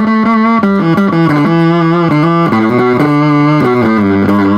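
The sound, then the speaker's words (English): A loud, buzzy fuzz-distorted guitar played through a fuzz pedal on its scuzz setting, a heavily noise-gated effect, plays a riff of stepping low notes, each one thick and sustained with a harsh, saturated edge, continuous for several seconds with no talking. “You've got this big crazy buzz, and all these neat weird sounds and things that are coming from it.”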